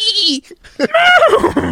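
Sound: horse neighing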